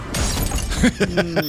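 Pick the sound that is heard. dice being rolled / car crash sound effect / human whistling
car crash sound effect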